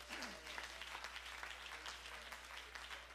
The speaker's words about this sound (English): Would you give God a clap of praise?